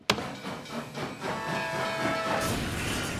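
A freight train roars past at speed with a steady rushing hiss and rumble, briefly joined by a sustained whistle-like tone partway through. No one speaks.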